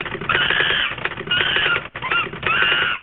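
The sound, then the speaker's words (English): Rapid, clattering typing fills the whole stretch, a dense run of loud keystrokes with a brief pause in the middle before it resumes at the same frantic pace. “All right, one other person to introduce, and that is the typing monkey.”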